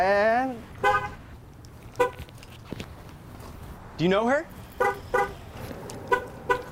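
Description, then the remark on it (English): Several short car horn chirps sound at irregular intervals as a car is locked outside a store, each a quick, bright toot, mixed with people talking and faint footsteps in an outdoor setting. “Why are you locking your car?”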